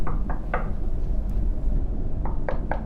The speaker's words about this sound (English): A knock is at the door.